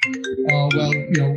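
A mobile phone rings with a bright electronic melody, a quick run of steady tonal notes played fairly loud, with no talking over it.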